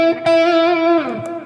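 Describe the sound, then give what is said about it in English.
A sustained electric guitar note in C sharp minor rings out, then slides down to a lower pitch, with a washy tail from a little reverb and delay carrying the sound. Moderately loud, with no voices. “What I want you to notice is that I've got a little bit of reverb on, and I've got a little bit of delay.”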